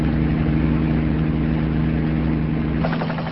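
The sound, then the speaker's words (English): A helicopter leaving the ocean and heading inland drones steadily, its engine a loud, constant roar layered with deep humming tones and a faint rhythmic chop toward the end, with no voices. “After a while, the helicopter leaves the ocean and heads inland.”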